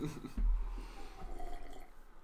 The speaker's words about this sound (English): We're drinking water on the podcast. Drink my water. It's great. I love the flavor of Burlington tap water.